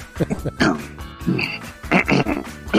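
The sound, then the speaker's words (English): A short burst of night-time crickets chirping, mixed with loud, rhythmic croaking calls in quick uneven pulses, with no talking over it. “I don't even think the crickets got that one. No, we need to cue the crickets better.”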